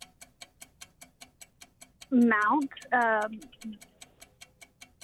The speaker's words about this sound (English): When you're put on the spot and you can hear that tick, tick, tick, tick, tick, tick, tick, it gets a little stressful.